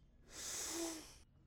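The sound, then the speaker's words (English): A single deep, airy inhale during a classroom breathing exercise, taken while standing and raising the hands above the head, drawn in steadily for about a second, swelling and then fading, with no talking. “We'll do a breathing exercise. Please stand up. Now, breathe in and raise your hands above your head.”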